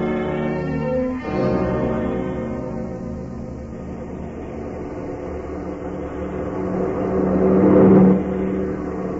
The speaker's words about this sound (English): We swing the car around the curve a little further and head it this way.